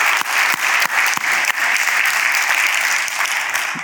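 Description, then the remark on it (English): An audience breaks into steady, dense applause, many hands clapping at once in a broad continuous wash with a few sharper claps standing out, sustained loudly for several seconds with no talking. “If we're going to clap, let's do it.”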